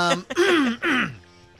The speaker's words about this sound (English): You know, I'm sitting here. I gotta tell you guys, I'm like so self-conscious about clearing my throat. Like, I fucking hate doing that, you know?